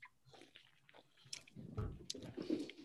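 Wet mouth sounds of someone sipping a sour hard seltzer, soft at first and then louder, with a few small slurps, smacks and swallows and no talking.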